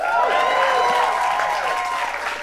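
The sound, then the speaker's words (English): An audience applauds steadily and loudly for the Inflation Reduction Act, the dense clapping mixed with scattered cheers and whoops, holding strong for a couple of seconds before easing slightly. “No, it's absolutely great to be in a room that applauds for the Inflation Reduction Act.”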